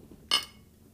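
A single bright clink of a glass wine bottle, right next to the speaker, as someone drinks wine straight from the bottle; sharp at first, then ringing briefly with high metallic overtones before fading over a quiet, low background hum.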